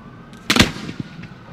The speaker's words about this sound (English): This next demonstration will clearly show why no consumer should attempt to use these powerful professional fireworks.